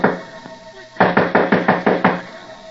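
A rapid series of about seven firm knocks on a wooden door, evenly spaced, following a moment of quiet room tone.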